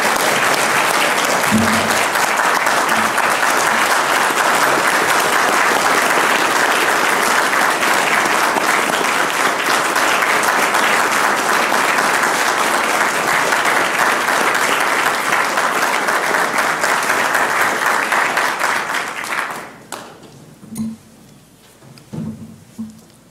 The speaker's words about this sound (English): Please join me in a hearty round of applause for John Lenchowski.